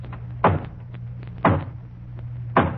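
Three slow, hollow knocks on a front door, about a second apart, each a loud, resonant thud against a faint low hum, with no voices.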